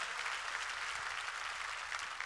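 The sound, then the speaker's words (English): An audience claps to give praise to God, many hands blending into a dense, continuous wash of bright applause at an even loudness throughout, with no voices standing out. “Come on, clap your hands and give praise to God.”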